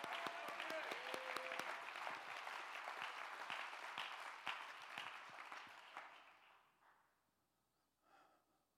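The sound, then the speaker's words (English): A crowd claps hands in dense, steady applause to give God praise for about six seconds, then the clapping thins out and fades into near silence, with a brief faint stir near the end. “Come on, clap your hands and give God the praise.”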